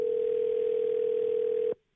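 A steady, loud telephone tone sounds as a call is placed from the New Country 103.1 radio show, holding one unbroken pitch for nearly two seconds before cutting off abruptly into silence.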